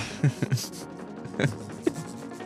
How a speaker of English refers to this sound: is rubbing the spirals on his notebook.